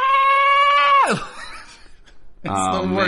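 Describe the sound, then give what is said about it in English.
A voice imitates the flight scream of the superhero Banshee (Sean Cassidy), whose power of flight comes from screaming: a loud, sustained shrill scream that swoops downward and cuts off, followed after a short quiet gap by a second strained, buzzy yell. “It is one of the funniest clips you will ever watch, because this poor voice actor who they were had playing Sean Cassidy Banshee, they were like, okay, and now your power of flight comes from you screaming, so this poor actor is just like,”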